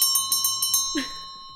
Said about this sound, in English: And with that, there's the opening bell.